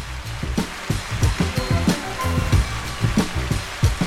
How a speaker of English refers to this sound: Where's my hand clap? Let me make sure I hit the right one.